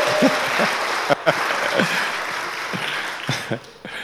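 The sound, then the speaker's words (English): A round of applause: steady, dense clapping for about four seconds, with a few brief vocal whoops or cheers breaking through the crackle. “A round of applause.”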